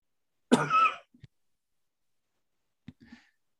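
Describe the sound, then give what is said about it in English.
A single loud cough bursts out near the start, followed by a couple of faint clicks and a soft throat sound, with silence in between and no talking. “Hopefully I hit the cough button in time there.”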